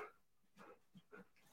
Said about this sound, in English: my dogs are wrestling right next to me. They're literally wrestling.